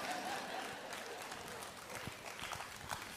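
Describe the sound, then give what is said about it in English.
Two people clap, a brief patter of quick hand claps over a steady noisy background, fairly soft and lasting a few seconds. “Yes, two people clapped.”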